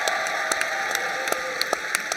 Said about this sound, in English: And if you would, give a roaring round of applause and cheer for Mims Baptist Church and their staff and their team.